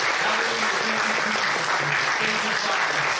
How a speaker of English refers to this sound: Can we give him another hand clap of praise?